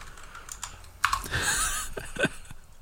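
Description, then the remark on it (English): Rapid, irregular clicks of typing on a computer keyboard as someone retypes a misspelled search on Google, moderately loud, with a brief burst of heavier keystrokes midway and no voices. “He spells it wrong. He's typing it out again.”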